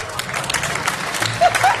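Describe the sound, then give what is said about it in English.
Steady applause from an awards ceremony audience as the award goes to The Blind Side, a dense, even wash of many hands clapping, with a couple of brief high whistle-like tones near the end. “Sandra Bullock not clapping.”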